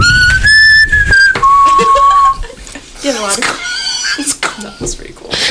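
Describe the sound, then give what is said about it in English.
Someone whistles: two loud, steady held notes, the second slightly lower, followed by wavering, sliding chirps and trills that sound like a birdcall imitation. “I'm sorry, I whistled on you.”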